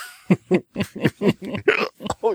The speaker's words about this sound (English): Now he's got hiccups. Oh, my God.